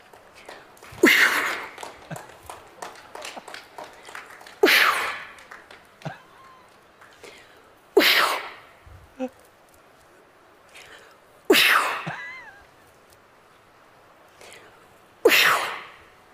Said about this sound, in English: And as for those countries in the global south, this Brazilian shaman gave her cough of approval.